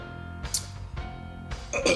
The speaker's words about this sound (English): Oh, come on. Damn, I'm sorry, y'all. That was weak. I should be ashamed of myself. That wasn't even a proper burp. I thought it was going to be bigger when until it came out.